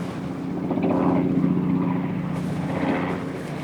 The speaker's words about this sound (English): determination, ingenuity, and a remarkable flying machine, successfully launched the era of powered flight.